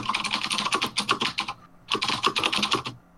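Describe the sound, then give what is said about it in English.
Rapid typing of the words 'blue Swedish ducks' on a computer keyboard, a dense clatter of keystrokes in two bursts separated by a short pause, fairly loud with no voices. “Typing sounded a lot like the letters for blue Swedish ducks, so.”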